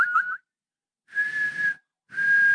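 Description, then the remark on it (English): A person whistles: a quick wavering chirp, then two longer steady notes with a lot of airy breath noise, separated by brief silences. “I can whistle, but I can't right now for some reason.”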